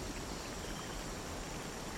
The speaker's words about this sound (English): This waterfall giving a sense of power, yet peace.